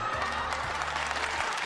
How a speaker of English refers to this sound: Because we can't afford a sound effect. We have got one of them somewhere. No, we don't. Do we? What, a round of applause?